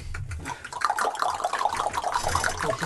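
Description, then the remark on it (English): A crowd of people clicking their tongues together, a dense, continuous patter of hollow, pitched pops that sound almost like dripping water, steady in loudness throughout with no talking. “Can we tongue click?”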